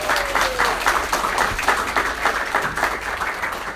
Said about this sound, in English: And the crowd goes wild!